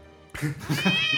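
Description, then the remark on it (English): After a brief quiet moment, a drawn-out meow rises and wavers for about a second, fairly loud, sounding like a human voice imitating a domestic cat. “My cat meows.”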